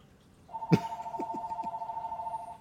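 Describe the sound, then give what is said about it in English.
A house phone rings with one steady, mid-pitched electronic tone held for about two seconds, opened by a sharp click, with a few soft knocks underneath and no talking. “Is someone calling for ransom?”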